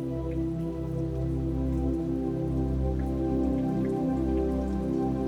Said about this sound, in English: You see the clouds slowly roll in and begin to feel little droplets of rain hitting your skin.